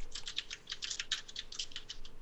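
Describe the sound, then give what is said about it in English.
Rapid, irregular clicks of keys being struck on a computer keyboard, a steady burst of typing with no talking. “Wow, that's pretty potent, because I can hear your keyboard.”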